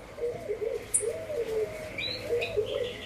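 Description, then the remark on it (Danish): Birds sing and call continuously in mountains full of green palm trees and other trees beside a light-blue sea, with a low, repeated cooing running underneath higher chirps and whistles, moderately loud, with no one talking. “Og på min højre side, der har jeg bjergene, som er fyldt med grønne palmetræer og træer og fugle i alle mulige afskygninger, der synger.”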